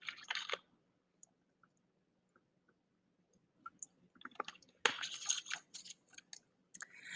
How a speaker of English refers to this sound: Let me drink some water.